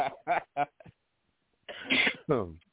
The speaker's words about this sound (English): I keep muting my microphone because I'm coughing and shit, you know?